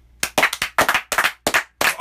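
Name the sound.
hand clapping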